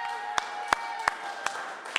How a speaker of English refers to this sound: Hold it up and we all give them a round of applause. Yeah!